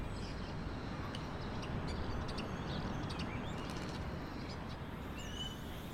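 Faint, scattered bird chirps and tweets in a quiet city neighbourhood sound over a steady low outdoor rumble, with no voices and no single call standing out clearly.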